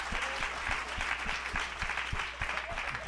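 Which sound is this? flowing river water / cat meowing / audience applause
audience applause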